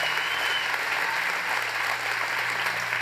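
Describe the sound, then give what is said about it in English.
A crowd claps steadily, a dense, sustained wash of applause filling the room at a strong, even level for the whole stretch without letting up. “Hey, would you guys give a round of applause for Justin?”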